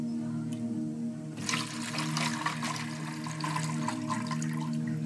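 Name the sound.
water splashing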